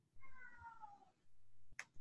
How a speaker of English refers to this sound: My cat is yodeling. I hear. He is so funny. He was over here just a second ago begging for something.